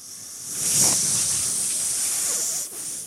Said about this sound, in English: Which button is it? It's the one marked barely audible hiss.